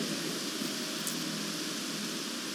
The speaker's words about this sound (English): It must be raining hard for us to hear it. Must be raining hard, but it's okay.